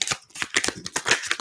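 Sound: shuffling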